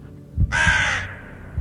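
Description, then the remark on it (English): A single harsh, raspy crow caw rings out loud for about half a second, standing alone against a faint low rumble with no talking. “Just me and it, cawing at me, its blood-red eyes staring at me from the darkness.”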